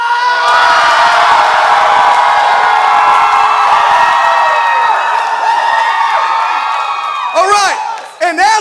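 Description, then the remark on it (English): A large crowd shouts and cheers at full volume on cue after a count of three, a dense roar of many voices held for several seconds, ending with a few high, swooping whoops. “Not one person got up on their feet to shout.”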